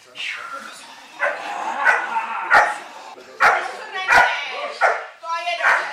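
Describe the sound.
A dog barks fiercely at a man acting threateningly, protecting the girl holding its leash, about seven sharp, loud barks in an uneven, agitated rhythm, with a human voice faintly audible in the background.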